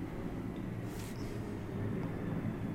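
A jet aircraft, thought to be a Navy F-18 doing touch-and-goes near an airfield, roars overhead: a dense, steady rumble with a broad hiss that holds at a constant loud level throughout, with no voices present.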